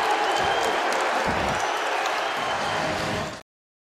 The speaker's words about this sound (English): Ben Lake heads down the tunnel to applause from his teammates.